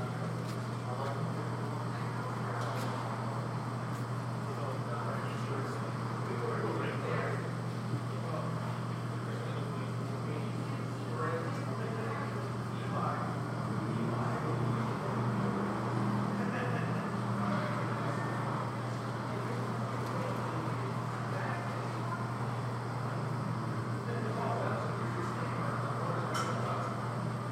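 A car engine hums steadily as the vehicle is slowly moved out of the way, a low continuous drone mixed with faint outdoor background noise and no one speaking.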